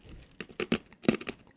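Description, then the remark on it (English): Crunchy chewing on hard maple sugar candy: a run of brittle, crackling crunches in quick, uneven succession, bright and moderately loud, with no talking. “Oh, you're just chewing on it.”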